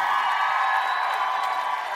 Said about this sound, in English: Let's give these guys a round of applause, for God's sakes. Oh, ladies, let them hear you, for God's sakes.